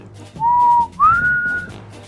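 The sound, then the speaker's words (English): A person whistles a birdlike call in imitation of a cardinal: a steady clear note, then a second note that slides upward and holds, fairly loud with no talking. “You want the whistle route because isn't that what a cardinal does?”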